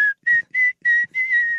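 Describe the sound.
Someone whistles a catchy hip-hop song melody, a series of clear sustained notes in short bursts, with the last phrase held longer and wavering. No one speaks.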